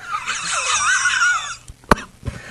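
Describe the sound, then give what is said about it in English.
A wheezing smoker's laugh sound effect: a long, raspy, high-pitched wheeze for about a second and a half, then a pause and two short, sharp bursts like hacking coughs, fairly loud. “Oh, I love the smoker laugh. Gets me every time.”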